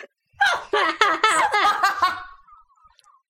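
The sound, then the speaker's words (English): A run of sharp, hiccupping bursts mixed into breathy laughter, fairly loud, about half a dozen rapid voiced spasms over two seconds before trailing into quiet. “The hiccups are still there.”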